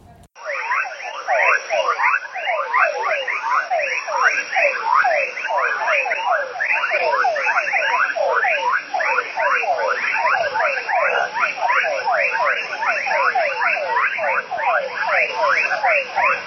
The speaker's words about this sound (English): So the one from last night was me walking back in the dark. Yeah. And hearing these crazy frogs, yeah.